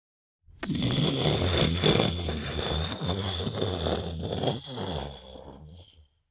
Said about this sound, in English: Rolling thunder.